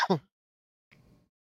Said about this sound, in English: Sorry, don't mean to keep coughing into the fucking mic.